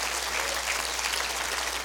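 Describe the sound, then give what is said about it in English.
A crowd of people claps their hands steadily at a speaker's call, the dense patter of many hands blending into a continuous, fairly loud wash of applause with no voices standing out. “Would you clap your hands and say, I love my relationship with my Heavenly Father.”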